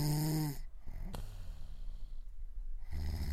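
Loud, close snoring: a deep, rattling snore, a quieter breathy pause, then another heavy snore starting up at the end. No one speaks.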